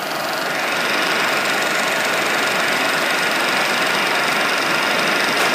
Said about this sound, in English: When it was being repaired, when it was repairing permissions, I noticed it was making some clicking noise.